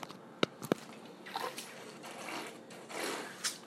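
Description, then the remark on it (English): Two sharp clicks, like a bottle cap opening, are followed by a few soft sloshing gulps of someone drinking water, with no talking. “I need some water.”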